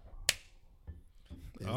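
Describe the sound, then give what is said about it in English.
A single sharp, loud hand clap rings out, followed by a few softer knocks and a voice starting to speak at the end. “The claps are getting a little, stronger did today.”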